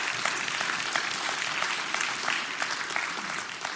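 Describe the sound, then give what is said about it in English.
An audience applauds steadily to celebrate an offering that covered a deficit, many hands clapping together in a dense, even patter that holds at a fairly strong level for several seconds without talk. “Can we clap?”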